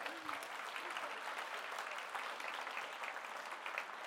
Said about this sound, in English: Thank you. Can we just give them a round of applause in the room?